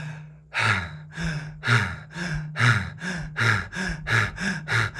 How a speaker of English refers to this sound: Do that, keep going. In and out through your mouth, hyperventilating into the chest. What you're doing right now is you're doing this. We're just going to do it for 20 seconds, don't worry.